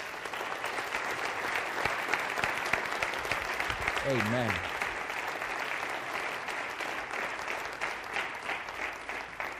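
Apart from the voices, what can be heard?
audience clapping hands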